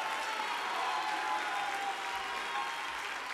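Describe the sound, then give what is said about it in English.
A church audience claps their hands together in sustained, dense applause during a sermon, a steady loud wash of overlapping claps with no distinct rhythm and no voices standing out. “Come on, clap your hands, all you people, and shout unto God with a voice of triumph.”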